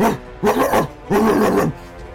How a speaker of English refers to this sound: As Old River, the large dog, comes right behind Flora and is just barking through the doorway.